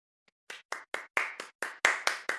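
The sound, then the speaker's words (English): A single person claps their hands about nine times in a quick, steady rhythm, each clap sharp and bright and growing slightly louder, with no voices. “I'm clapping too.”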